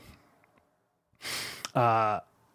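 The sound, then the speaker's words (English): A single loud sneeze: a harsh, breathy burst that snaps into a short voiced, tonal sound, preceded by a moment of near silence. “Bless you.”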